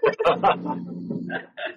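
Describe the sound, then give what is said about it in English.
A flock of chickens clucking at a hill house, a quick run of short, sharp clucks followed by a longer drawn-out call and a couple more clucks, fairly loud and with no talking. “So now we have a whole bunch of chickens up at the hill house.”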